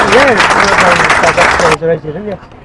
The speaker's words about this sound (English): So I think a round of applause for the York City Council.